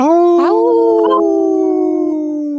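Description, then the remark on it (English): A State Senator, a lawmaker, lets out one long, loud wolf-like howl, a sustained tone that rises briefly then holds steady and slowly fades over a couple of seconds. “It's always fun to have a State Senator howl with us, which is always a good thing in a good way.”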